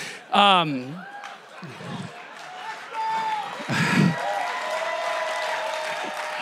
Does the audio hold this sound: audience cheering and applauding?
yes